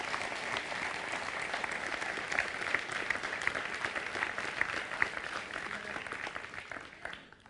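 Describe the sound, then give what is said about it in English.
An audience bursts into sustained, dense applause, a steady crackling clatter of many hands with scattered cheers rising above it, holding strong for several seconds before tapering off at the end. “His gospel is definitely something worth cheering over.”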